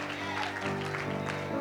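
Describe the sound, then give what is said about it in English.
An audience claps together for the Lord in a steady, dense patter during worship, with sustained musical tones holding underneath throughout. “Come on, give the hand clap to the Lord tonight.”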